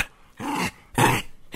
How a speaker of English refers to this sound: Hey, I have some dog commentary on this for us.